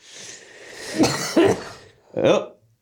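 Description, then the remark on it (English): A sneeze from someone with a cold rings out: a short, loud, breathy burst after a couple of rough, throaty sputters, with a faint hiss underneath and no talking. “I got this cold. Bless you.”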